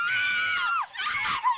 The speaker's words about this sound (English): That sounds like a roller coaster. Yeah, that was good. That's a sound effect. Girls screaming.